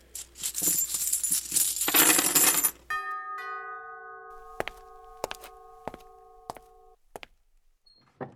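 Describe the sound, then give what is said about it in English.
At a party in the Masonic Lodge in Kibworth, keys rattle and jingle for a few seconds, then several separate metallic clinks land in a resonant bowl, each leaving a bright, lingering ring. Fairly loud, with no talking. “Please place your keys into the bowl and the fun can begin.”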